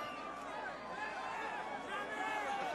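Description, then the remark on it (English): A large concert crowd shouts and yells together, many overlapping voices rising and falling in a continuous roar with no single speaker standing out. They are shouting the performer's name to get his attention and show him an ambulance is coming through the crowd because people are hurt. “If you can hear them, they're shouting his name to get his attention, to show him that there's an ambulance coming because people are hurt.”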